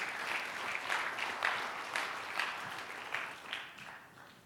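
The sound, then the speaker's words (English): A crowd claps steadily in dense, continuous applause, sustained at a fairly loud level for several seconds before starting to taper slightly at the end. No one speaks over it. “Give them a big hand.”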